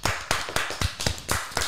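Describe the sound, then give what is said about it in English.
A small group clapping in a quick, steady rhythm, about seven sharp, crisp claps in under two seconds, fairly loud, with no voices. “Quarantine applause.”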